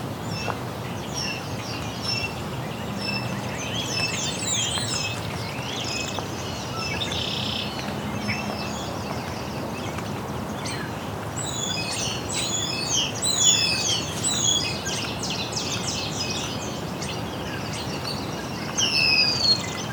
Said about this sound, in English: European starling.